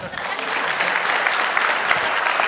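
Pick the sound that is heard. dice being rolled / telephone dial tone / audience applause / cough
audience applause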